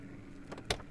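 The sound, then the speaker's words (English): A car door opens with a brief rustle and a sharp latch click, over a low steady engine hum, as a man steps out of the car at a cemetery gate. “By the time he had exited the car, he saw only a shadow of movement to the left of the gate entrance.”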